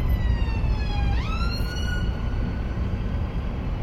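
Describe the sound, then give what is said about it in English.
An ambulance siren wails over steady road rumble, its tone holding, then sliding upward before fading away after a couple of seconds, leaving only the traffic noise. “Oh, ambulance.”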